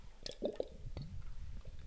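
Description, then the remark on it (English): A quick sip of water: a few soft, wet slurping clicks and a gulp, quiet and brief, with no one talking. “So anyways, I'm going to take a quick sip of water because I'm so parched, you guys.”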